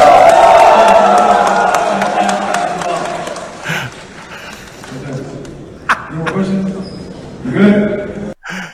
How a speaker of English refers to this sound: I love how everybody claps.